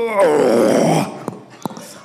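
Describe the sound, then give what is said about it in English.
A person at a panel imitates a walker, a zombie, groaning: one long, loud, throaty moan with a wavering, sliding pitch that lasts about a second, followed by a couple of short clicks and near quiet. “All right, you ready to give us your best walker?”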